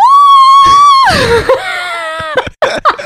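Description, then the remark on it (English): A person lets out a loud, high-pitched squeal in imitation of a guinea pig, holding the note, sliding down, then squeaking again before a few short breathy chirps. “I turn into a guinea pig.”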